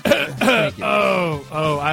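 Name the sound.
cough and throat clearing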